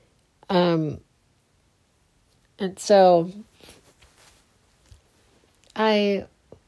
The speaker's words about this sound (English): And it was at this time, sorry about my yawns, it's incredibly early in the morning.